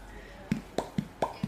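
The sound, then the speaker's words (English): A voice imitates a fish with five quick mouth pops in a steady rhythm, alternating between a low, dull plop and a brighter, higher one, each short and moderately loud. “Do an impression of a fish.”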